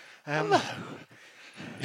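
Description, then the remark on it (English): A single sharp dog bark rings out outdoors, rising in pitch, at a spot with many dogs around, followed by softer rustling and breathy background noise, with another brief noisy burst at the end. “There's a lot of dogs here.”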